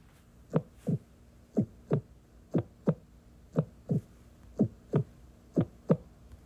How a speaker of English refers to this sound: Did you guess what it is? It's a heart beating.